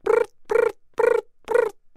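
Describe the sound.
A person imitates a snowy tree cricket's chirp with their voice: a steady series of about five buzzy, mid-pitched hums, each a quarter second long, repeated evenly every half second with brief silences between.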